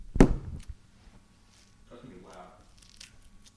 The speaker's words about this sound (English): I mean, the chewing noise is, I'm going to be unbearable listening to.